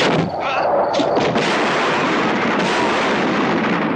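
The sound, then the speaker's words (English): Loud, dense bombardment of explosions in a dark field full of totaled cars near a military firing range, rumbling continuously with overlapping blasts and a roaring, noisy wash, intense throughout, with no clear pauses between detonations. “They try to hide from a spotlight in the dark in a field full of totaled cars, when suddenly bombs are exploding all around them.”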